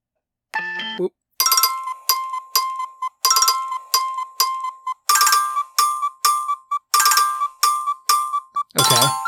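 An alarm ringtone called Chirp: bright, high electronic chirps in quick repeating bursts with a steady tonal pulse, looping in clusters over several seconds, followed by a brief lower synthetic tone at the end.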